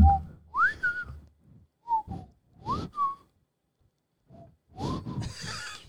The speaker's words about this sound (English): I know, I can't whistle when I'm smiling.